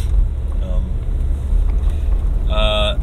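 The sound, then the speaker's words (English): Steady low rumble of a car interior while driving, with things rattling around inside, a constant loud road and engine drone, with a brief tonal whine rising up near the end. “So there's going to be some car noises and things rattling around, hopefully not too bad.”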